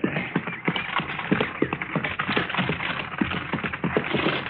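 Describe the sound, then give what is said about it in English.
Horse hooves clip-clop at a brisk, steady trot as a horse-drawn buggy rolls along, the sharp strikes evenly paced over a low rumbling background, with no voices. “How do you like riding in a buggy, Matt?”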